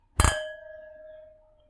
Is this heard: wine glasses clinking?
yes